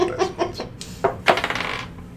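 Dice clatter across a hard tabletop: a few separate bouncing clicks, then a louder strike that settles into a quick rattling tumble before stopping. Fairly crisp, with no voices.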